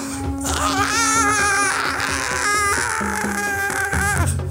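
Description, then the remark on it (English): A voice imitates a caterpillar's scream with a string of squeaky, wavering high-pitched wails and cries, fairly loud and continuous for several seconds, sounding more comic than convincing. “That's the least convincing scream I've ever heard in my life.”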